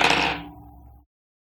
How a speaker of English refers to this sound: Great, roll plus sharp. With my dice.